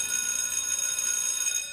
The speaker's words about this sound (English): Sure enough, as soon as the bell rang,